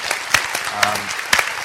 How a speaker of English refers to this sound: thank you for all the work you do. I'm going to give a round of applause for that.